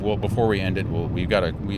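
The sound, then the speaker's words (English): Steady low road rumble fills the inside of a moving car crossing a 20-mile bridge just past Baton Rouge, near Lafayette, on the way back to Houston. The rumble runs continuously beneath people talking. “Bumping because I think we're on that 20-mile bridge between. With the noise.”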